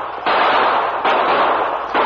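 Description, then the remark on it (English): Loud gunfire sound effect in a radio drama, wagon drivers and troopers shooting at attacking Apache Indians on the river trail: a continuous roar of harsh, crackling noise that surges sharply three times, roughly once every second, with no voices. “Hey, Indians! Holy mackerel, start shooting!”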